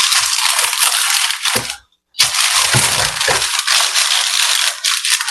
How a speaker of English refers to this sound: So I'm going to unravel my first thing of parchment paper. And it wants us to have the sides overhanging. So that's what we're going to do. And the way I get it to tear is by pulling the box away from the paper.